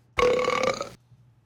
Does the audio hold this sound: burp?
yes